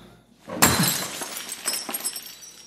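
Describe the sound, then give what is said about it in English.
A glass is thrown onto a hard floor and smashes with one sharp, bright crash, followed by a scatter of smaller tinkling fragments settling over the next couple of seconds. No voices are heard. “No, that's when he throws the glass on the floor, right?”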